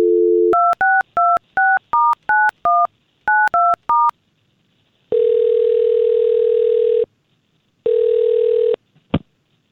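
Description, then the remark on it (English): A short dial tone gives way to a quick run of about eleven touch-tone beeps as a man's phone number is dialed, then two long ringback tones with a pause between, ending in a click as the line picks up. “we've got his phone number, and let's try to get a hold of this Alan”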